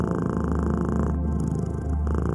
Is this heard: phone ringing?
no